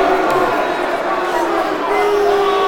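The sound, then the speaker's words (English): A loud, steady roar of a large football stadium crowd at a Millwall versus Charlton match, about 90 decibels, dense overlapping voices and chanting blending into a continuous wash of noise with no pauses or distinct individual words. “The crowd are alive. The decibel levels are 90.”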